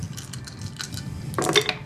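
Plates being smashed: a few light ceramic clinks, then a sudden harsh crash of breaking crockery with bright, ringing shards scattering briefly at the end. No voices.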